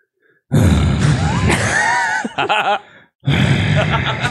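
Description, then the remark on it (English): A voice imitates an old man's loud snoring grunts: a long rasping snort, a few choppy wheezing pulses, then another heavy throaty grunt after a short pause, loud with no words. “And that man was either snoring or grunting.”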